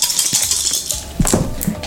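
Several dice clatter and tumble across a table, a quick scatter of bright clicks and taps with a few louder knocks near the end.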